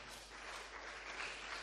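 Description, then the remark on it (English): A crowd clapping their hands, a steady dense patter of many claps blending into a continuous crackling wash, fairly soft and unbroken, with no voices over it. “If you are clapping your hands, please do it well.”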